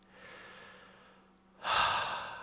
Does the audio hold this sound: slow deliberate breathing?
yes